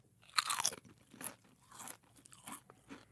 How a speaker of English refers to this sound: I have two different potato chips in front of me right now, chip A and chip B. Okay. And I want you to tell me, based solely on the sound of the crunch, which chip is fresher, crisper, better.